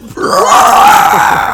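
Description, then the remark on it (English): A man's voice lets out a loud, sustained, gravelly roar imitating Godzilla, held for over a second at full volume with no other words spoken. “Fucking shouting like Godzilla.”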